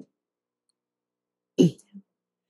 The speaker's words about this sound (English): See, that's another breath.